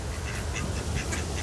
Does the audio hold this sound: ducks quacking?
yes